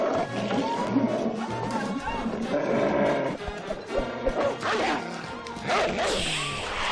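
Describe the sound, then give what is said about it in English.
A dog barks and snarls again and again, loud, its rough growling calls running almost nonstop over a dense, noisy background for the whole stretch. “That's a real dog”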